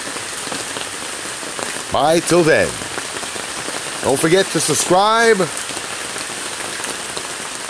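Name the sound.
rain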